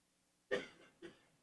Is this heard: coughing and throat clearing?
yes